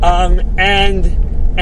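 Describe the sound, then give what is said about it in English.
A steady low rumble of a car driving, heard from inside the cabin, runs continuously beneath the voice of the man driving it, talking in short bursts. “As you probably figured out, I'm driving in my car.”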